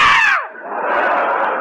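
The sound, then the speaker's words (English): A loud, shrill burst of audience screaming swoops downward in pitch, then settles into a sustained wash of crowd shrieks and yelling that carries on without any talking. “For …, they swoon. For me, they scream.”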